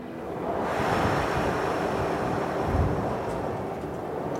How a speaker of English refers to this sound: Let's see how many leaves we can blow out of the tree with one last big gust of wind. Take a long, deep breath in. Now, your biggest gust of wind.